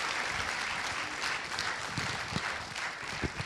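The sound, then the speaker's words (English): Steady applause from a church audience, a dense wash of many hands clapping at an even level throughout, with a few sharper individual claps standing out near the end. “Why don't you give everyone an applause?”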